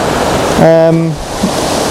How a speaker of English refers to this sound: It's a bit difficult crossing and I'm all wet now, but hopefully it'll be worth it because this waterfall is really cool. I can't get very close, but I've got some foreground stuff going on.